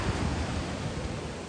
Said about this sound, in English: We're gonna get as close as we can to this beach right now, this water's edge.